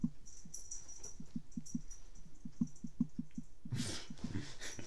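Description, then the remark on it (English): A female dog licking herself, a steady series of wet, smacking laps in quick rhythm, with a brief rustling burst near the end and no talking. “She's just licking herself, man.”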